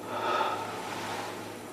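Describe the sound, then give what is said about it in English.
A single long, airy breath from an actor, recorded on the set of the film Oppenheimer during the bomb test scene, slightly raspy, swells quickly and then slowly fades over nearly two seconds, with no talking. “It's so thrilling to see an entire audience full of people just on tenterhooks, hearing only the sounds of breathing that Willie was able to get from the actors on set.”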